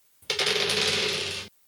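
Dice being rolled during a tabletop role-playing game rattle and tumble across a hard surface in one continuous clatter lasting just over a second, fairly loud, with no voices.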